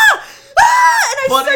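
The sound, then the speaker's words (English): A woman lets out high-pitched, wavering screams, a short cry followed by a longer sustained shriek, acted out as a surprised scream in the middle of telling a story. “and I started screaming in the theater because I wasn't expecting it, and everybody's flying now.”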